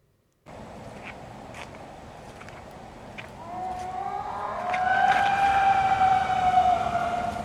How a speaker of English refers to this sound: Almost like a wolf. Coyote.